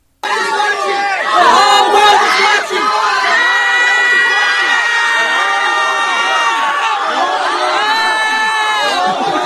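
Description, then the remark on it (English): A protest crowd on a campus, being cleared out by police with pepper spray, erupts in frantic screaming and shouting, many high, wailing voices overlapping loudly and continuously for nearly ten seconds, with a sharper surge of shrieks early on. “And here's a little audio of them getting doused. It sounded like it got pretty crazy.”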